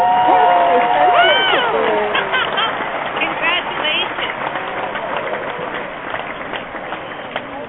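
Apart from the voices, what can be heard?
applause and cheering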